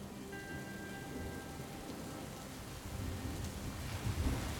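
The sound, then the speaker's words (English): Steady, heavy rain hisses throughout, with a deep rumble of thunder building low and heavy over the final second or two. No voices are present. “The rain falls sideways as thunder and lightning flashes and rolls overhead.”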